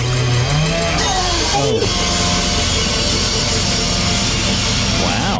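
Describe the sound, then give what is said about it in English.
A chainsaw roars loudly for the whole stretch, its engine revving up and down in gritty surges, with voices faintly breaking through beneath the noise. “Yeah, this woman jumps between a chainsaw and her employer”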